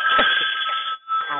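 A mobile phone rings during a live show with a bright, steady electronic tone, briefly pausing before sounding again, while low voices murmur underneath.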